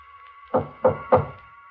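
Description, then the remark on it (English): Three firm knocks on a door, evenly spaced, each a dull wooden thud, set against a steady faint hum in the background. “He knocks on my door.”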